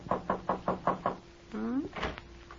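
Five firm, evenly spaced knocks on the wooden back door of Ma's house kitchen in the evening, clear, followed by a rising creak as the door swings open and Shuffle pokes his head in.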